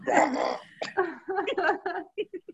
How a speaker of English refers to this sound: Good, belch. But I know, I just took a drink and I thought, oh, I have to burp. Yeah, just let it rip. Ooh, just let it rip.